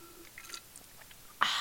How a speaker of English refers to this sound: As I sip on my Celsius that is currently beside me, give you a little bit of ASMR.